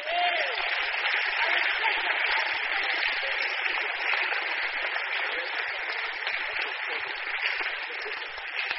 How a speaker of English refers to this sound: Clap for them again.